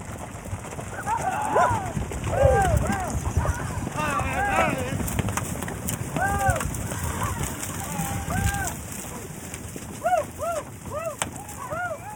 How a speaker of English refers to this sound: A few hundred ranch horses being herded by cowpoke almost ran us over.